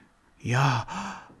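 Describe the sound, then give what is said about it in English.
A slow, deliberate breath in and out during meditation, drawn out in two connected phases like a long sigh, breathy and partly voiced, with no other sounds around it. “Because breathing in and breathing out is like saying Yahweh. So I'm breathing in Yahweh.”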